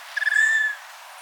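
An Allen's hummingbird's wing feathers give a few quick buzzy pulses that run into a sustained, thin whine lasting about half a second, clear with no voices, as the bird swoops back and forth like a pendulum at the bottom of its dive.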